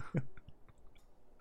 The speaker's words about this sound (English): That's just me slurping on the mummy juice.